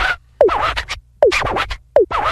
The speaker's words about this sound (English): Sound like a scratching record.